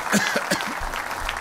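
A church audience claps for the Lord in a dense, continuous patter of many hands, with a voice calling out briefly over the clapping near the start.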